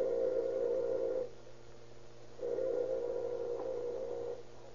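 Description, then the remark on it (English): A house doorbell buzzer sounds twice: one steady, low, droning buzz lasting just over a second, a pause, then a second, longer buzz, over a faint hum. “A few moments after he has entered the house, Dr. Hatch hears the doorbell ring.”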